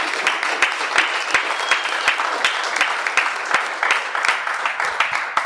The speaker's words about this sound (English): But let's give them a round of applause because this is not easy. This is hard. Go ahead and give them a round of applause.